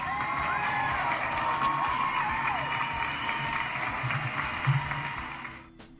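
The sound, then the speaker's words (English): A crowd claps and cheers loudly with scattered whoops and shouting voices, a dense, steady roar lasting several seconds before fading out abruptly at the end. “So let me get an applaud with that.”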